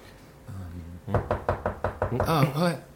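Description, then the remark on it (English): A quick run of about eight firm, evenly spaced knocks on a door, fairly loud, then a voice briefly sounds right after. “Someone get the door. All right, I'll get it. It's okay. It's okay. It's just the door.”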